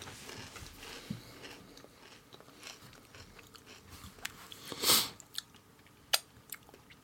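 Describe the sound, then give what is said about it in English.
Crunching and chewing of a crisp Twiglets snack, with irregular crackly bites scattered throughout and one louder, longer crunch near the end, no talking. “I can't hear whoever is swiglet crunching.”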